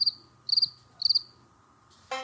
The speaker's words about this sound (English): Let's have some cricket moments. Okay. Come on, crickets, take over. Y'all sit back and enjoy.